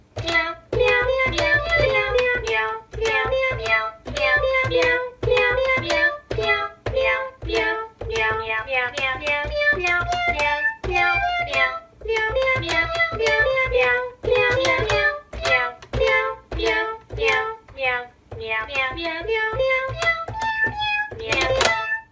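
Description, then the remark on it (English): A bouncy electronic keyboard tune, the Keyboard Cat tune of a cat playing a keyboard, plays on its own, with short repeated chord stabs over a steady low hum, loud, continuing without pause and with no voices. “But until next season, we will let Cat Keyboard play us out.”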